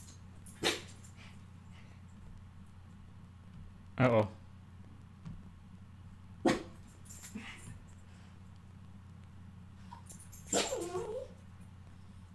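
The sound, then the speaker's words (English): Dogs bark in a few sharp, widely spaced bursts, ending in a longer whining, whimpering cry, over a steady low hum. A voice briefly speaks between the barks. “YouTube puppy. My dogs and birds.”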